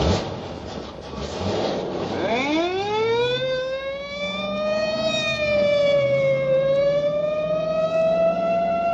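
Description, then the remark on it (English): A police car siren winds up from a low growl into a loud, steady wail, holding its high pitch for several seconds with a slight dip and rise near the end. No one speaks. “Or in a screaming squad car.”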